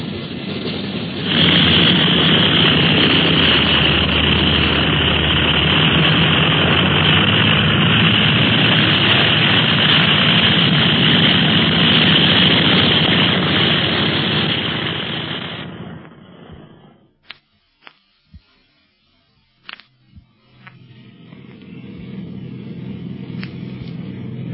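airplane engines running

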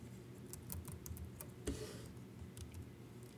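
typing on a keyboard

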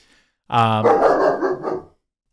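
dog barking downstairs

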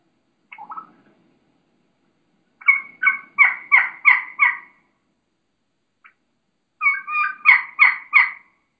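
wild turkey hen calling

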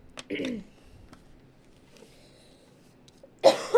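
sneeze

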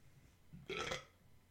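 burp

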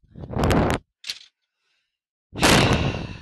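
door being closed

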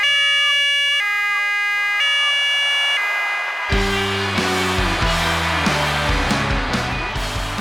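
ambulance siren sound effect

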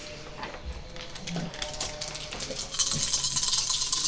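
dice rattling and rolling

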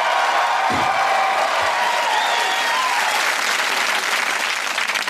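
studio audience applause

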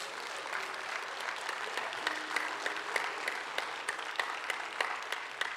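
audience applauding

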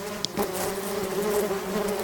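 bees buzzing

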